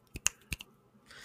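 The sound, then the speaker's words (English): Three or four sharp, bright finger snaps in quick, uneven succession, with no talking, followed by a faint hiss at the end. “Give some snaps.”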